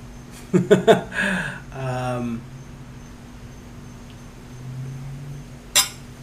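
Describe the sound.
Glasses clink together several times in quick succession in a toast, bright, followed by brief murmuring voices and a hum, then one more sharp clink near the end.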